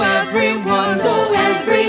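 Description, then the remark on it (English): Bright bells jingle and ring steadily for a couple of seconds, loud, their shimmering tones layered over a sustained musical backdrop with no talking. “Ring the bell, ring the bell. Ring ding ding ding a ding the bell.”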